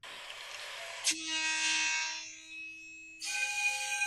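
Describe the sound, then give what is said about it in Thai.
The whistle of a Hitachi diesel locomotive sounds in a long, steady blast, its pitch wavering slightly in a steam-whistle-like tone, with rumbling train noise and a second burst of rushing sound near the end. “อ๋อถ้าอันนี้ฮิตาชิคือตัวนี้จะเป็นรถที่เสียงหวีดจะคล้ายรถจักรไอ้น้ำ”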